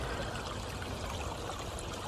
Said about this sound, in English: Some nice evergreen trees being planted, and there are three large bowls that have the water cascades from one to the other.